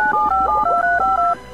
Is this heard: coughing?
no